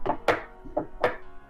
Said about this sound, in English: There you go, you're traveling. I don't traveling. Know how that sounds to you, but to me, this sounds like a horse, kind of.